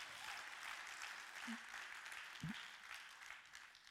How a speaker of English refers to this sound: Come on. Come on, if we're going to clap, let's clap.